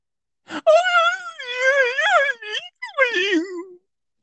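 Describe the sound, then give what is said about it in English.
A voice imitates an older brother screaming at someone: a long, wavering, wailing cry with shifting pitch, broken by a couple of short gaps, then a final sliding howl that trails downward. “That's how I always imagine her brother screams.”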